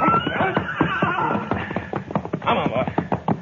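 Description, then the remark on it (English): A gray horse neighs and snorts while hooves clop steadily on hard ground, the whinny rising and falling over a busy, continuous rhythm of footfalls. “All right, you take the gray horse”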